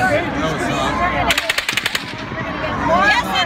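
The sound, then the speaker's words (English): A rapid burst of about eight sharp, loud gunshots from a real gun fires in quick succession, set against a noisy background of voices before and after, with the harsh, clipped quality of an iPhone recording. “And I just started recording with my iPhone because I wanted my kids and my family to know what happened to us. That is a real gun.”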